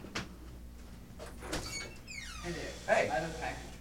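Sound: door being opened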